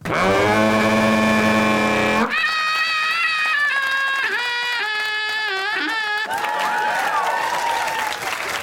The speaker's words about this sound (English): And that was a sheep.